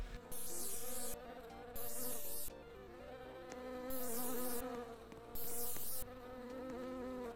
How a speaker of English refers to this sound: All right, I'm going back to the beehive. I got my spray. Let's see if I can get him.